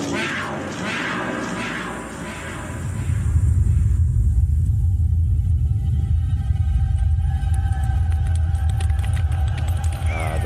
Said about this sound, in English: The stampede. And there it is, the Lion King, Simba.